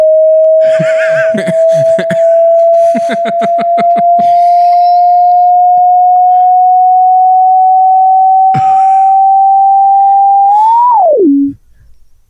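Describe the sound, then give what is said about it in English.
A loud, steady pure sine tone holds for about eleven seconds, creeping slightly upward, then flicks up and drops away. Early on, bursts of rapid rattling noise sound over it. “Now I've outgrown my mortal flesh box to achieve the perfect sine wave.”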